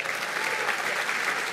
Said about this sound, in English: We don't have to clap at every half sentence. I got a lot to get out, otherwise we're going to be here all day.